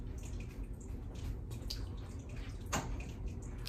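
A small water fountain trickles steadily with a continuous soft splashing as someone tries to put a cup underneath it; one brighter drip or splash stands out briefly. No one speaks.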